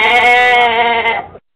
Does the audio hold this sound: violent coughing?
no